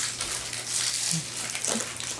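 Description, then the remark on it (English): Paper wrapper being unwrapped: a steady, papery crinkling and rustling that runs throughout, with a few slightly sharper crackles toward the end, at a moderate level. “Ooh, it's in a little paper wrap.”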